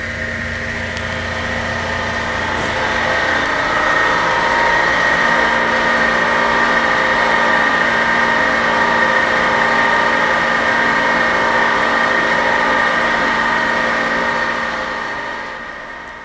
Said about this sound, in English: It is in the Natobi Gardens at the University of British Columbia. As we move closer, you can hear the very audible whine of the generator pump used to get the water up into position to fall.